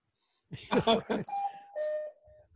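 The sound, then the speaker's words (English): A brief mechanical clatter is followed by a cuckoo clock's call: two sustained tones, the second a bit lower, sounding clear. “You guys are going to hear my cuckoo clock.”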